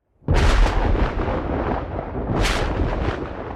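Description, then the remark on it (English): A thunder sound effect: a sudden, loud crash of thunder bursts in and rolls on with a deep, rumbling roar, swelling again briefly before sustaining heavily to the end. No voices. “I like the sound effect. It's like Vancouver weather.”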